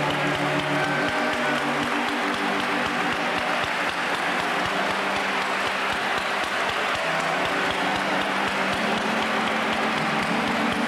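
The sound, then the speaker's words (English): A Pentecostal audience at a church service claps loudly and steadily, dense overlapping handclaps filling the whole stretch, with music or a sustained tone running underneath. “Let's lift him up with a hand clap tonight.”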